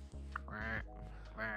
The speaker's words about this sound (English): Now, I am going to do a reflective sound, shall we say? I thought that was like a tumbleweed sound, that is. Yeah. Sounds like a duck at this end.